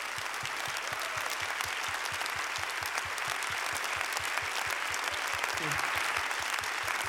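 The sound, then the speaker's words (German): A church audience breaks into sustained, loud applause for women and men of the church, a dense wash of clapping hands that holds steady for several seconds without pause, with no one speaking over it. “Und lass uns diesen Frauen und Männern einen huge, tremendous Applaus geben.”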